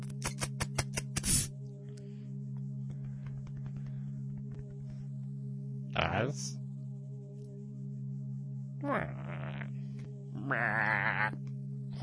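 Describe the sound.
Three wavering sheep bleats sound at intervals, the last one longest and quavering, over a steady low hum, with a quick run of clicks at the start.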